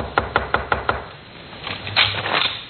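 Five quick, evenly spaced knocks rap on a wooden bedroom door at 2 a.m., followed by a pause and then a soft shuffling or rustling sound. No one speaks.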